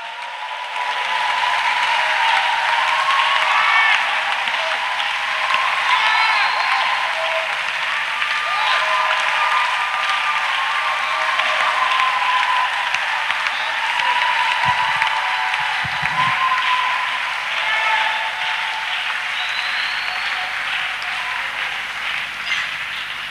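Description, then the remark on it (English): A church audience claps steadily and loudly for over twenty seconds as a clap offering to the Lord, a dense wash of applause with faint cheering and voices mixed in, sustained at an even level throughout. “Does somebody want to give the Lord a clap offering now?”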